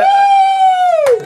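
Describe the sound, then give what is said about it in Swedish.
An audience member at a fight event cheers for the FCR title challenger. It is one loud, high-pitched cheering scream held steady for about a second, then sliding down in pitch as it breaks off. No talking over it. “Vi har ju publik här också, vad är publiken?”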